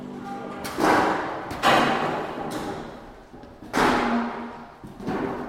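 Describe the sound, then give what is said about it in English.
Folding chairs being set up in a square, all facing the middle, for a shape note singing in Virginia: a series of irregular clattering thuds and knocks, about six loud impacts spread over several seconds, with faint rattling and a low murmur of activity between them. “Like a lot of shape note sings, this one starts with folding chairs.”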